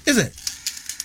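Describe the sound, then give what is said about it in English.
Blue wrapping paper crinkles and rustles in a few short, crisp bursts as a present is unwrapped, just after a brief sliding vocal sound at the start. “That's blue wrapping paper.”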